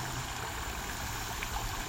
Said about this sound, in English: when you're feeling centered and relaxed and you're comfortable with your breath, then bring your awareness to the creek, the sound of the water tumbling over the rocks.